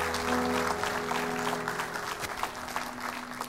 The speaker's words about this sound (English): Would you give the Lord a clap offering for his love and his grace?